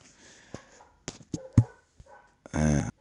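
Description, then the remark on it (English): Dogs bark in a short irregular burst of sharp yaps, building to one louder, drawn-out bark near the end, fairly close by with no one talking. “Oh, yo, there's these dogs, so I'm going to try to talk over them.”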